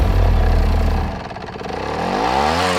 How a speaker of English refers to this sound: with his bikes, his motorbikes, and he would buzz all through downtown